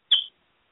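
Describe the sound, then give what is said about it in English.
A single brief, high-pitched chirp from a pet bird, clear, fading quickly into silence with no talking. “You got a whistle.”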